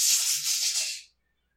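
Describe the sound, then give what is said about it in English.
Dice rolled during a tabletop game rattle in a steady, bright, scratchy burst for about a second, swelling in a few quick surges before cutting off into silence. No voices. “So clunk. Yeah. And then you hear 3 more rattles.”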